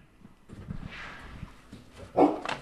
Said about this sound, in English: There's a new dog. Ugly. Can you sit? Good boy.